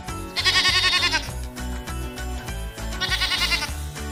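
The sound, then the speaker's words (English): A goat bleats twice, each cry loud and quavering with a shaky vibrato, about two seconds apart, over a steady thumping music beat that plays throughout. “Goat.”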